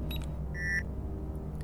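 A single clear electronic beep from a pressed keypad button as a key code is punched in to open a door, with a few faint clicks before and after, all over a steady low rumble like an elevator or machinery hum.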